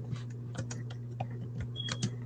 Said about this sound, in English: I can hear you. Typing.